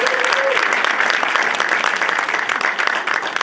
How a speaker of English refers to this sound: So have a nice round of applause for everything they do.